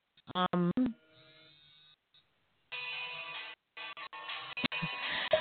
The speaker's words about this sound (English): My regular phone is ringing. Well, and it's one of my students.